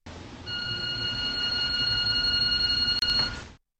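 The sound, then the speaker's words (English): An electronic doorbell rings as one long, steady, high-pitched electronic tone lasting about three seconds, fairly loud over a low rumbling background hum, with no talking. “Who lives behind a bell like this?”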